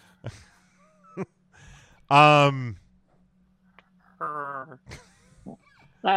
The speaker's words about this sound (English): That sounded like a cat making a noise.